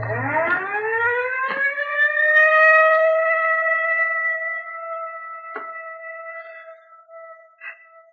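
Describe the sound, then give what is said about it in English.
An ambulance siren winds up from a low growl into a high, steady wail that holds loud for several seconds, broken by a few sharp clicks, with no voices. “Johnson's in the ambulance.”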